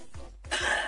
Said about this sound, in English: I was coughing.